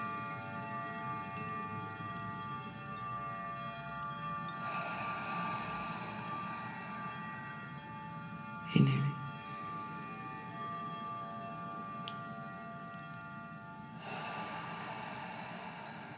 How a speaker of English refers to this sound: Exhale the breath out through the nose. And inhale through the nose.